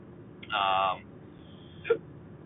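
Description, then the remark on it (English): Two hiccups, the first a drawn-out voiced yelp and the second a short, sharp catch about a second later, over quiet background with no talking. “And I'm starting to get hiccups, so I think I'm about to hang it up.”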